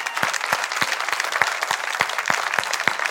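An audience breaks into sustained applause for about 20 men in Right Direction Living recovery houses who are watching online. Many hands clap in a dense, steady wash, with a few sharper individual claps standing out throughout and no voices on top.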